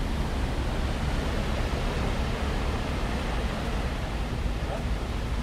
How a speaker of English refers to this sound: And then down below, if I lean over the railing, I can hear the sea, the water of the sea.